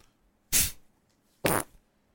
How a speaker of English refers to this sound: Well, accidental fart slipped out midway through your scoffing.